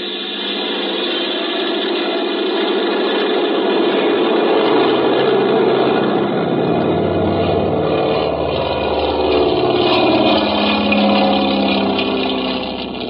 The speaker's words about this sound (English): Got the plane gas, Folger? Yeah, all set. Well, I guess we can take off. Here we go.